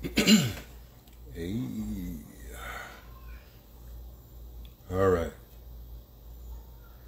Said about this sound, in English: Let me clear my throat.